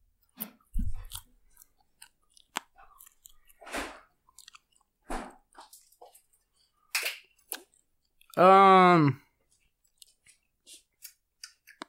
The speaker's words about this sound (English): So I'm just going to eat the body of the cricket because I heard you're supposed to take all of it off. I'll eat one like this and then I'll eat one.